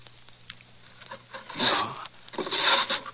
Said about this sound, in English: It's not here, Professor Presbury. I'll try the drawers. It's usually in the upper right. No, not here. Perhaps the left one.